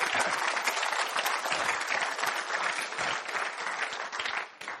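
An audience applauds warmly, dense clapping from many hands filling the room at a steady level for several seconds before easing slightly at the end.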